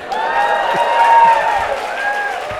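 A live show audience applauds and cheers, a steady wash of clapping beneath many raised voices, sustained and fairly loud across the whole moment without any break.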